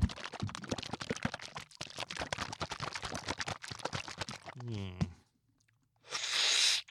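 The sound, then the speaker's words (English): A stretch of crackly clicking and crunching gives way to a brief squeak, then a short, loud, airy, deliberate slurp as someone sucks a SlimFast drink from a Rubbermaid plastic container. “That noise that you hear, that's a purposeful slurp. You have to do that on these Rubbermaid containers because if not, the SlimFast gathers in there, and when you drink, it goes all over your clothes.”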